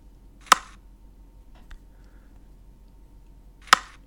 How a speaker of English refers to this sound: But, I mean, one of the best sounds here is the cricket bat. It's the leather on the willow. And let's ruminate and enjoy that.